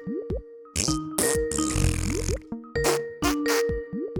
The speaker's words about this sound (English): I farted.